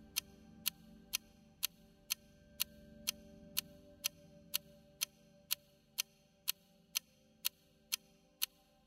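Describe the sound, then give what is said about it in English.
An analog clock, used for meditation, ticks steadily and crisply, roughly two ticks per second, each one a sharp click standing out above a soft low hum, with no voices present. “Have you ever meditated to an analog clock?”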